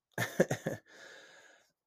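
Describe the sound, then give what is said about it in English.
Three quick, harsh coughs in fast succession, followed by a softer breathy exhale that trails off, with no talking. “I apologize. I've been coughing a lot.”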